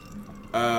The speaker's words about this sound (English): So, let me let this ambulance go by.